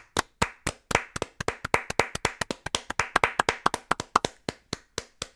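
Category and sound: human body sound, hand clapping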